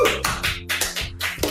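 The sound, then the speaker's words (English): Hand clapping by a man in London clapping for healthcare workers at the very end of a 24-hour live stream: about seven sharp, bright claps at an uneven, unhurried pace, fairly loud, over a steady low tonal hum in the background. No one speaks. “Here's him clapping at the very end of the 24 hours.”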